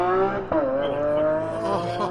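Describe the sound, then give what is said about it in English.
A powerful high-performance Lamborghini SUV engine roars, its pitch climbing and holding as the vehicle accelerates on a track, with a brief sharp bump midway and a hint of tire noise. “This is one of the Lamborghini trucks.”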